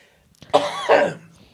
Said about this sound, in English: Wow. We have so much coughing going on today. Sorry. My thing is because my throat is strained from all my teaching today.